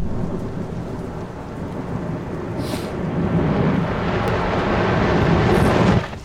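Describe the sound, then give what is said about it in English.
A thunderstorm recording played in reverse: steady rain hiss under a deep rumble that slowly swells louder, then cuts off abruptly near the end instead of fading. No voices. “Ladies and gentlemen, thunderstorms backwards.”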